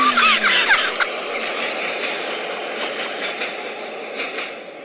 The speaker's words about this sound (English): Hold on, this train going by. Cool train!